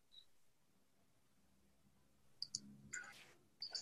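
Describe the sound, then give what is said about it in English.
A few crisp computer mouse clicks, a quick pair first, then a brief shuffle and another click near the end, as someone clicks a microphone unmute button for a caller. “Greg's clicking the mic, the unmute button for you.”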